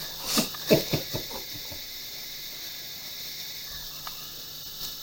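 A can of Monster energy drink pops open with a quick metallic crack and a burst of fizzing hiss, followed by a few short clicks, then a faint steady carbonation hiss lingers.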